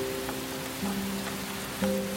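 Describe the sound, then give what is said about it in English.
Water drips onto a hard floor in a slow, irregular patter of soft taps over a steady low hum, with a few slightly louder drops standing out. “You can hear the drops as it hits the floor.”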